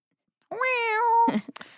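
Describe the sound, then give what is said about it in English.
A voice imitates a guitar whammy bar with a sustained, wavering 'weee' tone that dips and bends in pitch, followed by a few short breathy bursts. “That's like a cat, like wee. That's like my whammy bar noise.”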